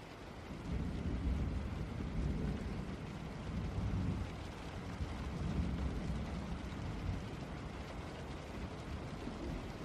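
Steady, unbroken rain hisses throughout, mixed with a deep, low rumble like thunder that swells and fades a couple of times underneath. No voices.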